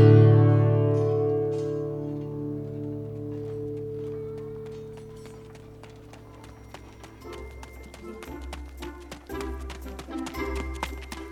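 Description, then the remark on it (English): A dense patter of running footsteps, a group of guards chasing down an alleyway in a Dungeons and Dragons game, many feet pounding quickly together, building up and growing louder in the second half after a low, fading tone at the start. “We hear a cluster of footsteps as a group of guards are chasing down an alleyway after you, Aladdin.”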